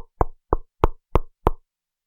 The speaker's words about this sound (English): I am going to knock on the door.